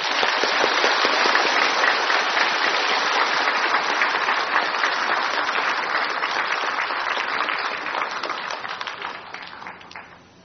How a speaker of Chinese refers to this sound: 最后请大家一起来恭请师父讲经，谢谢大家。 请在热烈的掌声恭请师父开始。